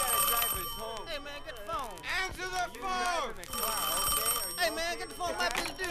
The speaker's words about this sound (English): Don't answer the phone, man. You got that? Don't answer the phone, even if it's me calling, man. Don't answer because I think the phone is bugged, man.